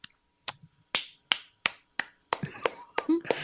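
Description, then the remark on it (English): Crisp finger snaps from an audience in place of applause, starting as a steady, evenly spaced series, then thickening into denser overlapping snaps with faint voices mixed in. “Explain your applause for the audience.”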